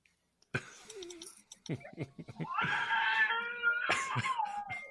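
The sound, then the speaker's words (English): A man's voice imitates a baby screaming, rising into a loud, sustained, strained wail after a few short rough vocal bursts. “showing off his baby screaming.”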